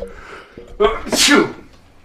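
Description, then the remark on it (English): A single loud sneeze: a short sharp intake of breath followed by an explosive burst, then quickly fading. No talking accompanies it. “I'm also trying to set some stuff up on the fly, including sneezing.”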